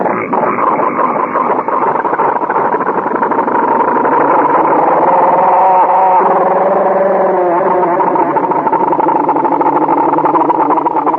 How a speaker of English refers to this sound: You want to hear that engine again? Let's hear that go.